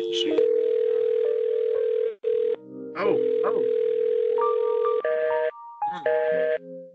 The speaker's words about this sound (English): Maybe there's a phone we could check. The answering machine.